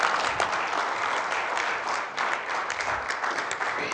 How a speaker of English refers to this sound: Come on, let's give God the best round of applause. Amen.